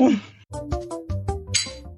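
A bright clink of wine glasses of Pinot Grigio in a toast, ringing briefly at the start, followed by people talking, with another light chiming note partway through.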